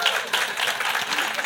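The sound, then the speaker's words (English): An audience breaks into steady applause for a speaker's 29 years of marriage, a dense, even wash of many hands clapping at a moderate level with no pauses for the whole short stretch. “You know, my wife and I, we celebrated 29 years of marriage, and so that's, you can clap, that's her good fortune.”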